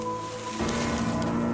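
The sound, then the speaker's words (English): Steady, dense heavy rain hisses down onto foliage and leaves, a continuous wash of pattering with a faint low hum underneath at the start. No voices are present. “Leaves and dirt clung to my face, but the heavy rain quickly washed the debris off.”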